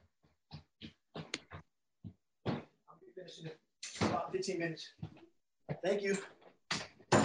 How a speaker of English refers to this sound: I got to open my door up for the cleaning crew.